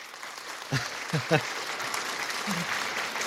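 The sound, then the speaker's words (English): A steady round of applause, dense and even clapping throughout, with a few brief voiced whoops or shouts rising over it early on. “Oh, that deserves a round of applause”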